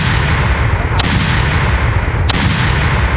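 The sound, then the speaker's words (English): A triple cannon-fire sound effect: loud cannon blasts boom out one after another over a dense, roaring rumble, each shot a sharp, heavy burst spaced about a second apart, with no talking. “Sending out to Eric a triple cannon.”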